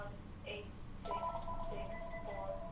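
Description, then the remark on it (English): An office telephone in an office rings with a repeating electronic warble, short bright tonal bursts recurring about every half second, clear over a steady low background hum. “Oh, the telephone. The telephone. I'm going to go turn it off.”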